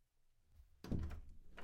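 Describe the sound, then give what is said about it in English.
A door opens with a sudden, solid low thunk partway through, followed by a brief rattling, scraping movement after a quiet start. “That's the door.”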